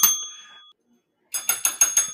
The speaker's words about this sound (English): That was a rather weak bell that time,